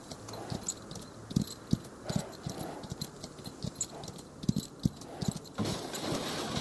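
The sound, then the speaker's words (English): Hooves of ridden horses clip-clop in an irregular, ambling rhythm on a quiet frontier road, each sharp knock standing out over a steady outdoor hum of insects and faint background noise. “Let's leave our horses and look for him.”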